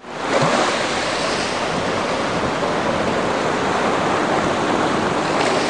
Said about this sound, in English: All I can hear is the thunder of the crashing waves.